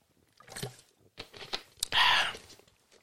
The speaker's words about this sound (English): Excuse me, let me take a sip of my water.